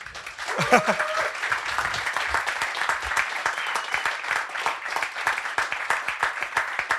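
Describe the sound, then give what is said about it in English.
A crowd breaks into sustained applause for author Johan Hari at a book event, dense overlapping claps holding steady at a fairly loud level for several seconds, with a brief cheer or voice rising near the start. “So let's have a round of applause for Johan Hari.”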